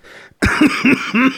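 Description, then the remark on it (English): A harsh coughing fit from an illness that moved from the sinuses down into the chest: a quick breath in, then a sharp bark followed by three more rasping, chesty coughs in rapid succession, loud and with no talking. “I felt like I was coughing so much that I had broken rocks of concrete in my chest.”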